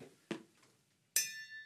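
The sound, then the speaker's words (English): A bell rings once: a short, dull knock comes first, then a bright metallic strike whose high, shimmering overtones keep ringing steadily until the end. “Check the status of this. Give us the bell.”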